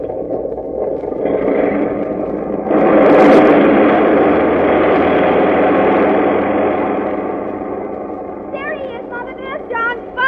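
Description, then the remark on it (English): Airplane engines roar loudly as a plane takes off, a steady, dense rumble that swells after a few seconds and holds, with voices faintly audible toward the end. “Well, just as you say, dear, but I must admit that the roar of those motors always makes me a bit nervous.”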